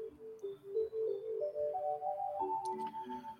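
A clock sounds a soft, steady melody of rising tones, close by and fairly quiet, with no voices over it.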